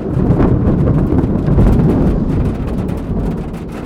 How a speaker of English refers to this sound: I love hearing the rain on a galvanised iron roof. I grew up on a dairy farm and hearing rain was a comforting sound. It used to get so noisy that you couldn't hear yourself think, but it also cocooned you in a noise so you fell comfortably asleep.